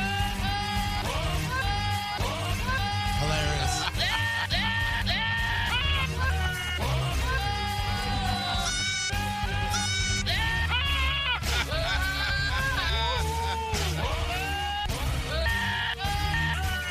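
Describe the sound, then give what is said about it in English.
Screaming goats bleat out a melody, their wavering, quavering cries stacked into a loud, steady tune over dense backing music that plays continuously throughout. “Here I have the Screaming Goats doing it.”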